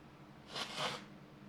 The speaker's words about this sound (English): So that line, I got to blow my nose here.